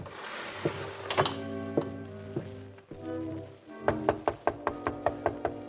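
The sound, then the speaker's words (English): Someone knocks on a penthouse door, first a few slow, spaced raps, then a quicker, louder run of about eight sharp knocks, clear with no talking. “That's the penthouse door over there.”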